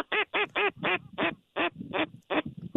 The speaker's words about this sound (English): False alarm. Nope, it's two gadwalls coming.